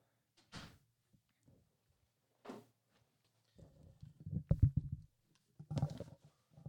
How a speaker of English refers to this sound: I don't know who the fuck is ringing my doorbell right now. BRB. I'm not editing this out. Oh, fine, whatever. You're going to hear me go and answer my door.